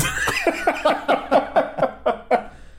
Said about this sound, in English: You're having a cough.